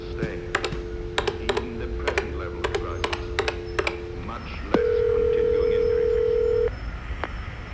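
A phone number is punched in on a touch-tone keypad: about a dozen quick beeps over a humming dial tone, followed by a single sustained, steady tone lasting a couple of seconds.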